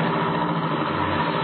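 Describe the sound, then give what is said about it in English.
A car engine runs loud, a dense, steady mechanical roar with a low rumble, as a car accelerates hard out of a garage under power. No one speaks. “Get into this car. Drive out of the garage like 60 and get past those two killers.”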